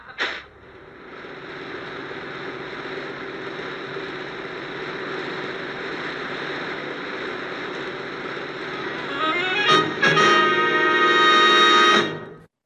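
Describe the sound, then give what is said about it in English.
An air conditioner switching on at the end of a scene kicks on with a brief click, then settles into a steady, droning mechanical hum that swells near the end with a rising, whining whir before cutting off. “So the hook for the end of this scene is an air conditioner goes on.”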